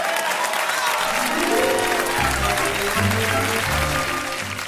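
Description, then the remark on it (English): An audience applauds and cheers steadily and loudly for the whole stretch as Paul Mooney is introduced, a dense wash of clapping, while a bass-heavy musical tune comes in underneath after the first second. “Make some noise, ladies and gentlemen, for Paul Mooney.”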